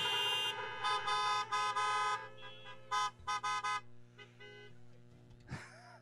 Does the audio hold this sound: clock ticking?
no